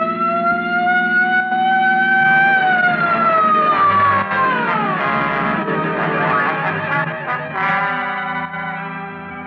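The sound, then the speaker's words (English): A police patrol car siren wails loudly, its pitch sweeping slowly up and then gliding down, with a low vehicle rumble underneath and no voices. “Just as the not-so-sharp shooter made another try, I picked up just what I was looking for, a game of tag with a police patrol car.”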